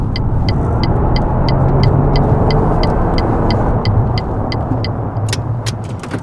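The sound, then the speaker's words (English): A car drives along with a steady engine and road rumble while a turn signal ticks in an even rhythm, as if it is about to pull over. No one speaks. “I think it's best you pull over.”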